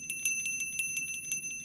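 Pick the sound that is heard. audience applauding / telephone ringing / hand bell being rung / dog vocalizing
hand bell being rung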